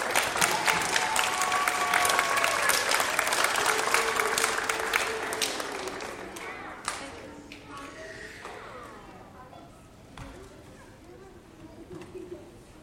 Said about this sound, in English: If you could please give them a round of applause for their hard work. Yes, they need another round of applause.